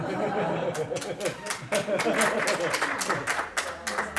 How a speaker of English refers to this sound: Just because that joke was bad, I'm going to put an applause right there. Thank you. I'm going to put like an actual applause in. Sound effect.